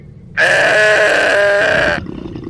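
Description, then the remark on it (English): A person imitates a goat to communicate with a goat, giving one loud, sustained bleat lasting about a second and a half, nasal and slightly wavering, then cutting off into quiet background. “Oh, come on, you call that a goat call? It's more like this.”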